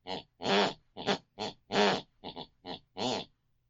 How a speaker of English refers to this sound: Whatever my mother listens to before she goes to bed picks and pulls on her unconscious mind. And that's the very tune that she snores.